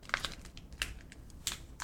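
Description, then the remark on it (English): A chocolate bar wrapper being opened: soft, irregular crinkles and crackly rustles come in several brief bursts, fairly quiet, with no voices. “You want to get the opening sounds of the chocolate bar?”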